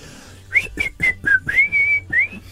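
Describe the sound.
A person whistles a short, bright tune of several distinct notes, some clipped and some held, rising and falling in pitch, clear with no talking, imitating the way bin collectors whistled while picking up the bins.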